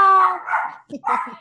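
dog barking

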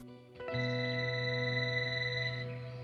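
telephone ringing

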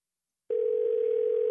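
telephone dial tone

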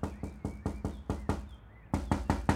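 knocking on a door

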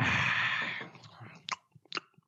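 chewing food

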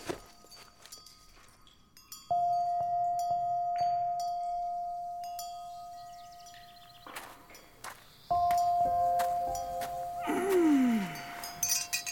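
wind chime ringing

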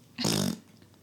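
fart sound

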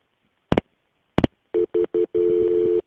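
telephone dialing tones

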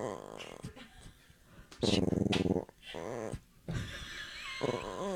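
dog growling

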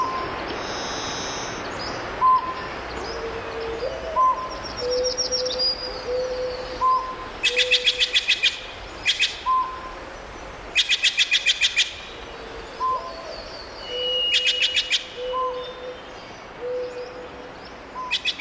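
birds calling

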